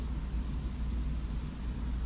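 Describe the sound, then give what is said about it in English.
A steady, unbroken electrical interference hum with a heavy low drone and a wash of hiss over it, holding at the same level throughout with no voices or other sounds. “He posts another one that is just sort of like a humming sound.”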